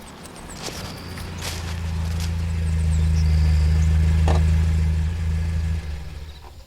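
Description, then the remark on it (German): A car's low engine rumble swells steadily as it draws near, holds close for a few seconds, then eases off, with a few faint footsteps and clicks scattered over it. “Hey, da kommt ein Auto.”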